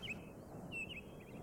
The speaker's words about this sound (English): The gentle sound of birds came from the trees behind Anna.